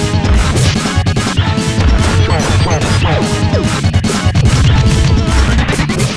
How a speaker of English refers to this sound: See that? You hit me with that filthy tail of his. Definitely still tail whip, boy.